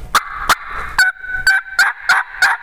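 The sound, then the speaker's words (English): A series of six or seven short, sharp, light turkey clucks made on a hunting call by a hunter starting to engage a turkey, spaced about half a second apart, fairly loud with no talking. “Just some light clucks.”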